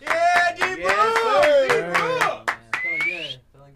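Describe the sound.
A short burst of applause welcoming the special guest of the night: scattered, irregular hand claps over voices calling out and cheering, fairly loud throughout, then fading out just before the end.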